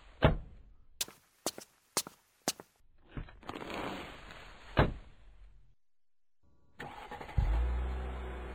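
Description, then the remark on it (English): A few sharp clicks and thuds like car doors shutting, then a car engine cranks, pauses, and starts up into a loud, steady low rumble. No one speaks. “Let me get you into the car, and then you can tell me on the ride home.”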